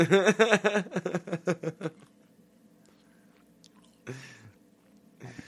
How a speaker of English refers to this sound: You gave off, like, noir detective vibes, just sitting there munching your French toast.